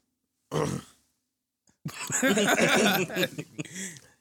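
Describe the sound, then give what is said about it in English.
A short, rough throat-clearing burst, followed after a brief pause by a longer stretch of raspy, voiced vocal noise. “I'm gonna clear my throat.”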